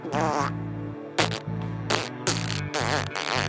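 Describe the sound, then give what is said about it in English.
A voice imitates a tiny mosquito fart with a thin, buzzy, whining raspberry, stuttering in several short bursts over about three seconds. “This is my impression of a mosquito fart.”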